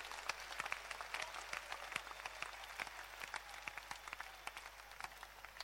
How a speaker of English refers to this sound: Now, if you are clapping, clap.